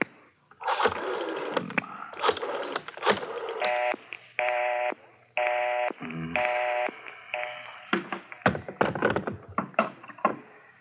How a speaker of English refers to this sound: Dial 9.